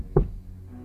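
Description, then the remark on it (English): A single dull knock on the wooden door of a covered wagon, short, followed by a quiet low background hum. “We hear a knock at her wagon door.”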